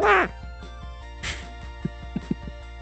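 Two loud, nasal duck quacks, one at the start and another about a second later, followed by a few faint clicks against a quiet background.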